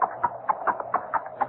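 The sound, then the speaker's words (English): Steady clip-clop of horse hooves, about seven sharp knocks in a quick even rhythm, mid-pitched and hollow, with no one speaking over them. “That horse is no recording.”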